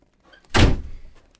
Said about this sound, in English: He's setting up the new chair. Should we find a WikiHow of how to set up a chair? Or you got it?